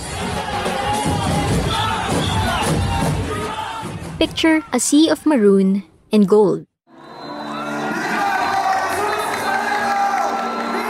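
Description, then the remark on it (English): A dense, loud crowd of devotees cheering and shouting at the January 9 religious procession of the Black Nazarene at Quiapo Church, Manila, a continuous roar of many voices that briefly drops away while a single voice speaks, then surges back. “Millions of devotees join the Tres Lacion each year, and the procession itself takes around 18 to 22 hours.”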